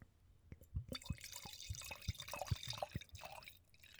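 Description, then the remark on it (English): Wine trickles into a glass in a thin, weak stream, with uneven gurgling splashes and drips over a steady liquid hiss. It is fairly quiet, with no voices. “It sounded like a weak stream.”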